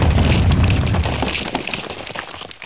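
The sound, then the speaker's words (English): Nuclear warheads detonate in a heavy, rumbling explosion with a deep low-end roar that starts loud and slowly decays into crackling, debris-like noise over a few seconds, with no voices. “So that you will learn by experience that I do not tolerate interference, I will now detonate the nuclear warheads.”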